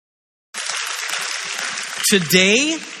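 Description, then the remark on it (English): An audience claps for a big announcement in a steady, dense burst that starts abruptly and holds for over a second, then a voice lets out a rising whoop as the applause continues. “You can clap for that.”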